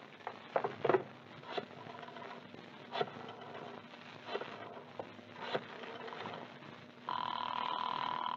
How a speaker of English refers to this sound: That's funny. The phone's ringing all right. Oh, why doesn't someone answer Santa's telephone?